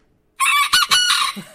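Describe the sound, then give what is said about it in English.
A rooster crows loudly, a single strained cock-a-doodle-doo with harsh, rasping harmonics that breaks off abruptly after a short silence. “That's what it sounded like. And the rooster lasted here one day and went back to Anne.”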